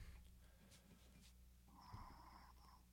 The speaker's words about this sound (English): Am I snoring? Yeah, we were hearing some very heavy breathing there. We thought we lost you for a second.